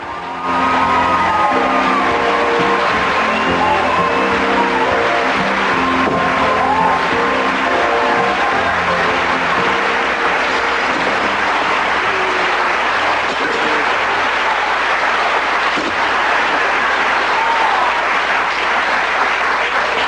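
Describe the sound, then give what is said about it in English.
Thunderous sitcom studio audience applause as Lucy walks into an empty hardware store at the start of act one, a dense, loud wall of clapping that holds steady for about twenty seconds, with scattered whoops and shouts mixed in. “Huge applause. Thunderous.”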